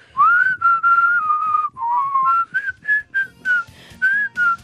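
Someone whistles a pop-style melody on their own, clear, with a long gliding opening phrase followed by shorter, separated notes that step up and down in pitch.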